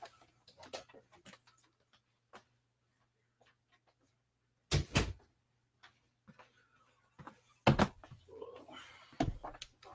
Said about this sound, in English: And one sec, give me one sec, guys. I'm gonna close this door. I'm getting a lot of echo.